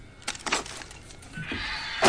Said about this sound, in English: He'll kick in the door, and then I'll start playing it. Or he opens the door.